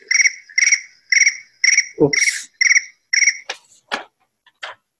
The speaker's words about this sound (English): Where is the phone? It's my phone which is ringing. That's all right. And I don't... it's in my pocket.